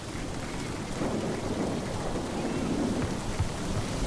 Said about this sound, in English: So we need a bit of rain and a bit of thunder.